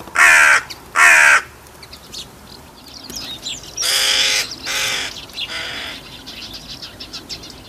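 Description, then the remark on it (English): Hooded crows caw loudly: two harsh calls in quick succession, then a run of rougher caws and chatter from several birds, with no one speaking. “I've got a nice video of hooded crows.”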